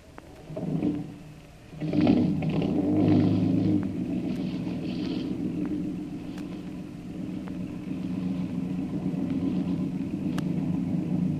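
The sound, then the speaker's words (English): A boat motor coughs and catches in two rough bursts, then settles into a steady, low, droning rumble that runs on evenly with no voices over it. “Start your motor”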